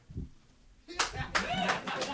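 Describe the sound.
A single person claps a few times in sharp, loud bursts, about four spaced claps over a couple of seconds, with voices and a laugh-like murmur underneath.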